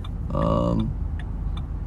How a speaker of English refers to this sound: Y'all, this traffic is terrible.